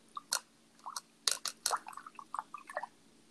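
Water sloshing and dripping in short, irregular splashes, a dozen or so quick wet bursts over a few seconds, moderately loud, with no one speaking.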